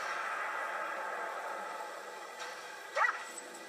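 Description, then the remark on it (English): A single short dog bark or yip pops up near the end over a steady hissy background with no one talking. “Bad dog giving away our little secret like that.”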